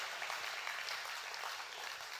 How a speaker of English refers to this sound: Come on, somebody ought to clap at that. I can't get any better, folks. You better help me out.